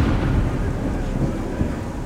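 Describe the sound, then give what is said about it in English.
A deep, rolling rumble of thunder from an approaching storm, sustained and heavy throughout, with no distinct cracks, just a continuous low growl that fills the whole moment. “Kwati had been offended by their request, and now he was sending another storm.”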